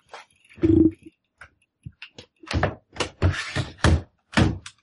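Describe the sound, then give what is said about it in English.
Heavy thuds at a front door: one solid bang, a short pause, then a run of about six loud, closely spaced knocks or thumps, with no voices. “Is your front door running Linux now?”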